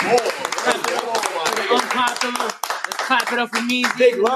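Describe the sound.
A small group claps in a quick, uneven patter while voices shout and talk loudly over it, the hand claps mixed into the lively chatter.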